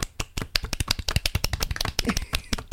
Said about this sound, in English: ISO clap. I'm using one of my hands for a mic, so I just clapped on my shoulder blade.